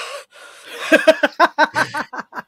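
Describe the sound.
A person imitates their dog Solar panting from the heat during hot days: a quick, rhythmic run of about a dozen breathy huffs, fairly loud, after a brief exhale.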